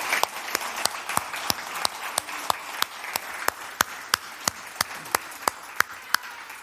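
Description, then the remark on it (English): A church audience breaks into sustained applause in appreciation of a man who serves there. It is a dense wash of clapping, with one set of sharp, evenly timed claps cutting through about three times per second, and no talking. “And we don't show it enough, but I want to show him just some appreciation for all that he does for us.”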